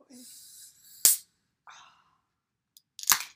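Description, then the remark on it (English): A drink can is opened: a steady high hiss of fizz, then a sharp metallic crack, a brief softer hiss, and a second loud snap. No one speaks. “Oh my God, the fizz.”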